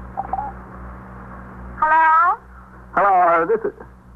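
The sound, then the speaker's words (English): A telephone rings on the line of a long-distance call to St. Louis in two short, buzzy bursts separated by a brief pause, sounding thin and filtered over a steady low hum. “I don't think anybody's home, Captain. Let them keep ringing.”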